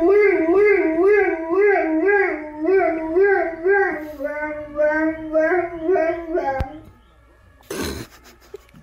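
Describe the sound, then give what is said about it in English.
A dog in Germany howls in a long wavering wail, imitating the siren of an emergency vehicle, its pitch rising and falling for about six seconds, then stops, followed by a brief click and a short rustling burst. “Okay, so this dog in Germany hears the siren of an emergency vehicle and then does a pretty good job of imitating it.”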